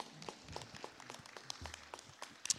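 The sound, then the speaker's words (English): An audience applauds a group to celebrate their work: a steady patter of many overlapping claps that stays fairly soft and even throughout, with a few sharper individual claps standing out near the end. “Would you please just right where you are, give them a round of applause and celebrate their work for what they do?”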